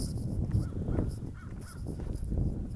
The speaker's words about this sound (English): Where is that coming from? There's a bunch of crows over here. I don't like it.